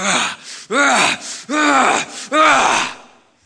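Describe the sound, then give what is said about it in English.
A voice imitates hard, heavy breathing to show the Greek sense of the word indignation: four loud, rhythmic panting gasps in quick succession, breathy, with softer inhales between them, trailing off at the end. “The word indignation means passionate wrath, and it literally speaks as if breathing hard.”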